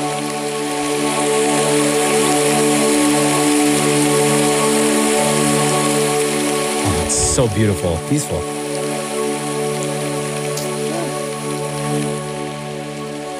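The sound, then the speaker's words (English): A steady, continuous hiss of recorded rain sounds for falling asleep, from an hour-long track, plays without letup, layered with a faint sustained tonal hum, while a voice briefly speaks over it near the middle. “Catherine puts rain sounds on all the time.”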